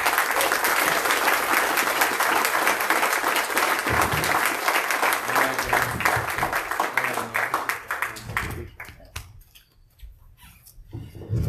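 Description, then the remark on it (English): Loud, sustained audience applause for Phil Sutton, a dense crackle of many hands clapping that thins out and fades near the end before a brief swell returns. “So let's give it up for Phil Sutton.”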